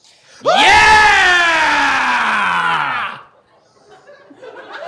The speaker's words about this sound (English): Okay, and could you guys just scream with excitement?